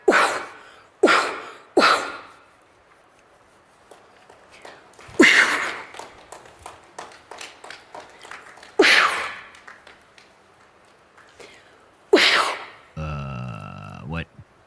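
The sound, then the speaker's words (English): A woman sneezes loudly and sharply about six times, three in quick succession, then more spaced out, with faint clicks and rustles between, ending in a brief buzzy tonal sound. “How'd you like to have this lady sneeze on her head?”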